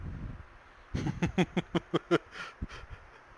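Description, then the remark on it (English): A fairly loud fit of coughing from a person getting over a minor cold: about seven quick, evenly spaced hacking bursts in rapid succession, then a couple of softer coughs trailing off, with no talking. “Hang on, I got a cough.”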